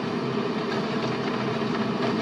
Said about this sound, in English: Look at how long this train is. Incredible.